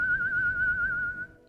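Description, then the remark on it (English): A person imitates a long whistle used to call a horse, a single long, steady note with a slight waver in pitch, held for over a second before stopping, over a low background rumble. “Three whistles again, man.”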